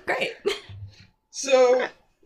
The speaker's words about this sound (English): That wasn't even a sneeze. I don't know what it was. A half sneeze, half cough.